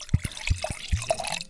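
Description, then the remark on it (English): Wine glugs from a bottle into a glass, a quick series of gurgling pulses over a bright splashing trickle, with no one talking. “That was a back from vacation pour.”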